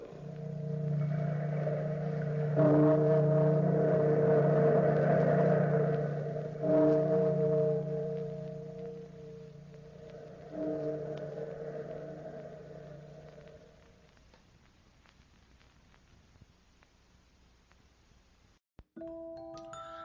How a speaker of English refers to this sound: Bellkeeper, toll the bell.